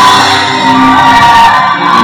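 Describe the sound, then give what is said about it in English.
A church crowd gives the Lord a shout of triumph, many voices shouting and whooping together in a loud, sustained roar, dense and continuous for the full two seconds with no single voice standing out. “If you believe that God has caused you to be victorious over your enemies, when you get to church, you give the Lord a ruah. It's a shout.”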